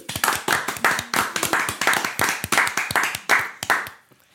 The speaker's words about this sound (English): Hand clap.